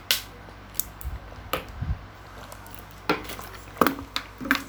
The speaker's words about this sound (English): Hang on, let me drink water.